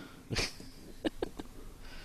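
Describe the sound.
A person makes an odd, cat-like vocal noise: a breathy, hissing burst followed by a few short, strained squeaks in quick succession.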